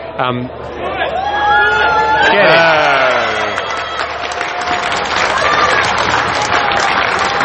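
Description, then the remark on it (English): A golf gallery erupts into loud applause and cheering after a shot, a sustained roar of clapping and whoops with a few voices standing out above the crowd noise. “I can't see who it was, but they've, I'm guessing, holed out for eagle, ended up second shot in the bunker front left, and holed out from quite a long way away.”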